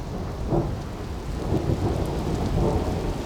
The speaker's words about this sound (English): Okay, status update. It's 5:59 a.m. It's thundering quite a bit. Seeing some lightning off to the north.